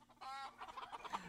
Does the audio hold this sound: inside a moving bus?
no